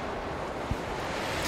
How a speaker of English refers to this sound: a huge piece of stone is sent flying through the air, crashing into where Ernest was, and continuing along, pulled by the howling winds.